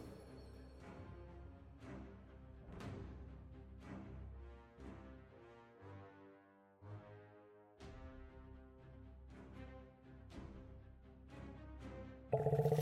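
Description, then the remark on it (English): A loud lion roar sound effect, with deep growling bursts recurring every couple of seconds over a sustained, tonal rumble and no talking. “And we got the lion.”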